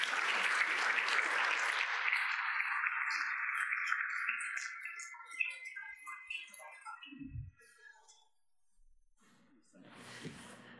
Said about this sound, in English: Well, that concludes our panel session, so let's have a round of applause for our great panelists.